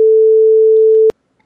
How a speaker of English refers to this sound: No, but you can put a little beep sound, stop recording.